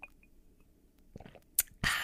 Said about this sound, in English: Let's take a sip of our coffee.